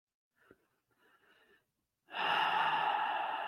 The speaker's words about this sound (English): Breathing in and breathing out.